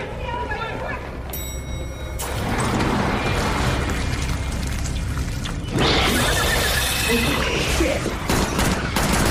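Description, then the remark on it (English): Loud, dense gunfire crackles in rapid overlapping bursts, a sustained fusillade that swells sharply partway through, with indistinct voices buried beneath the noise. “Those are gunshots.”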